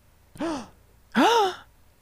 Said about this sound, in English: Gasps in Japanese. Gasps in Spanish.